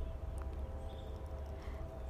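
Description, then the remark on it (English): A train horn holds one long, steady tone in the background over a low, continuous rumble, sounding throughout with no break and no one speaking; the train is sounding its alarm to warn that a train is in the area. “I hear the train in the background sounding their alarm to let you know that there's a train in the area.”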